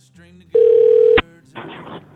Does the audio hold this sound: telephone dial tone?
yes